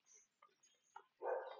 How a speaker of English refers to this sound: There is a funny, you can hear it, but there's a real little bark of that. I think it's a little, whatever, pug looking kind of a small dog that's just like contributing to the barking orchestra.